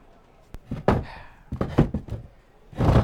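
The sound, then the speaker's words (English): A chair is flipped over while filming a scene: a quick knock, then a cluster of irregular wooden clunks and thumps, ending in a heavier, rumbling thud as it settles. “Keep the stock the sock stationary and flip the chair for me.”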